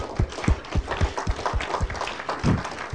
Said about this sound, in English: But let's give her a hand. Great story.